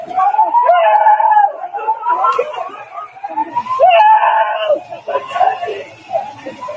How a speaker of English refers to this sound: It appears as though you're hearing in that video the screams of people possibly who were injured, because we know there were a number of them.